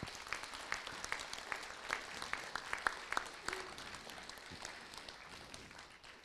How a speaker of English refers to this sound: Thank you. Shall we give a round of applause?